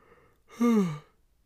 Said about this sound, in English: Excuse me. Golly, there's your yawn ASMR.